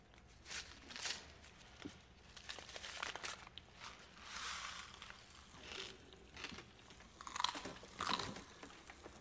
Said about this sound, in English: Yeah, they're Pop Rocks. They crackle in your mouth. Eat some.